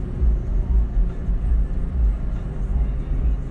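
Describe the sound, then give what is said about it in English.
A steady, deep rumble of a car driving through dense traffic heading toward a mall, with continuous road and engine noise holding at a fairly loud, even level and no clear talking. “Yep, the cars are steady coming out here.”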